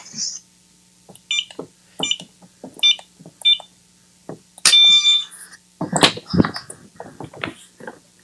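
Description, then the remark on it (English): A series of short electronic beeps from the keypad of a digital lock on a bedroom door as buttons are pressed one at a time, followed by a longer confirmation tone and the clunk and rattle of the lock turning as the door is unlocked. “And yes, I have a digital lock on my bedroom door.”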